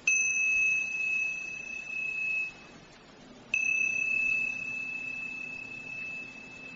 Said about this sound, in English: And you hear the sound of the bell in your own time, and gently and quietly begin.